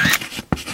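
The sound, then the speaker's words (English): A voice mimics the animated shutter of a disposable-style camera with two quick, breathy clicking bursts, the second sharper and more sudden, with nothing else around them. “Every time that fucking shutter closes.”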